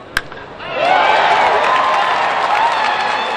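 A big baseball crowd at AT&T Park in the bottom of the ninth inning, Giants 3, Padres 5, swells into loud, sustained cheering for a late-inning comeback after a brief moment of quieter murmur, with a sharp clap or pop near the start and a steady roar of voices and applause.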